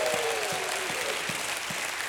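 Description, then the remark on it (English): An audience claps their hands in praise of God in the morning, a steady, dense wash of applause, with a faint, regular low thump about every 0.4 seconds underneath and no voices standing out. “If you are for God, give God a hand clap and a shout of praise this morning.”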